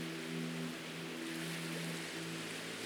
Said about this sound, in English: Now feel the rhythm of the calm waves flowing over the sand. It is so relaxing.